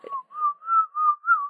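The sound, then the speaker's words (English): A person whistles a short tune, a clear pitched line of four or five sustained notes that gently rise and fall, moderately loud with brief breaks between phrases. “I tried to whistle it. I'm just not that great of a whistler.”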